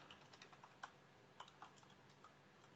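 Quiet, irregular clicking of keys on a computer keyboard, a steady patter of typing with a few sharper taps, against a faint background hiss and no voices.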